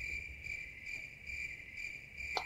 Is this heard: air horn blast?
no